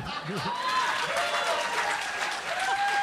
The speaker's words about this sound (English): A handful? Good. Clap anyway.